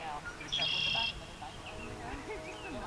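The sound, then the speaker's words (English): A short burst of high, bright bird chirping rings out for about half a second outdoors at a lavender farm in rural Missouri, then fades into soft background ambience with faint voices murmuring underneath. “Surrounded by fields of lavender with bees buzzing and birds chirping,”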